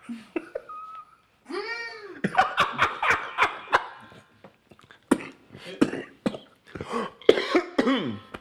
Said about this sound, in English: Excuse me for that cough.